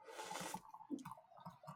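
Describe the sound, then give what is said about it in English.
Beer pours from a can into a pint glass: a brief hissing rush, then a few glugging, gurgling splashes. It is fairly quiet, with no voices. “Pour it right into your pint glass.”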